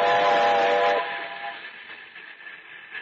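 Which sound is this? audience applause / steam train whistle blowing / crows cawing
steam train whistle blowing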